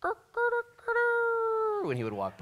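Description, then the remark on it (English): A man speaks briefly, then imitates a rooster crowing with his voice: a loud, drawn-out held note that bends downward and warbles at the end. “And you could imagine every time the sun rose, you'd hear that rooster crowing.”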